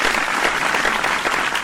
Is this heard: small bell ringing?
no